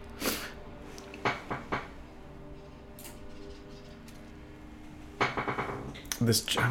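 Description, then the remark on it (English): A stick being broken in half: several sharp, woody cracks spaced apart, then a denser burst of splintering snaps and crackles near the end, over quiet room tone. “Breaking a stick in half.”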